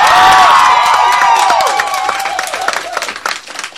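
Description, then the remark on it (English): Loud audience applause and cheering, given as a vote for a contest entrant, dense clapping with whoops and high shouts on top, strongest at the start and slowly thinning over about four seconds. “Your applause would be the decision.”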